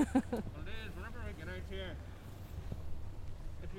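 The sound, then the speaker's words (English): A boat engine rumbles steadily at a low pitch throughout on calm water at night, with people talking over it as one of them drives the boat, and some wind buffeting the microphone. “Okay, he's trying to drive the boat.”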